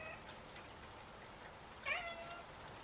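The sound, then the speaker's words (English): A single soft, plaintive cat mew sounds briefly near the middle, thin and high, in a backyard, over a steady hiss like light rain in the background. “It was the soft, pathetic mew of a cat.”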